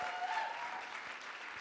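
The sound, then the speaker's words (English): A church audience claps and cheers continuously to welcome back returning visitors, the dense applause at a steady, moderate level, with a few bright whoops and shouts rising above it. “Can we, at every campus, clap and just shout for every... You came back!”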